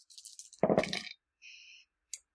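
Dice rattle and clatter across a hard tabletop: light ticking, then a louder tumbling burst, a brief faint ringing tone, and one last small click. Fairly quiet, with no voices.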